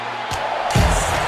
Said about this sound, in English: And it's Test! Oh, what a pop! Did you hear that pop from the crowd? Holy smokes!